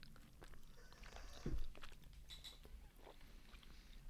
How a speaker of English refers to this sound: It's very chewy. They're very big. I should have eaten half of one. So I'm gonna be chewing this for the next half hour.